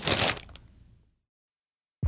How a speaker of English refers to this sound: Okay, I'm going to see if I can open the Ziploc bag with the gloves off. Ready? Yeah. And it's open. Huh.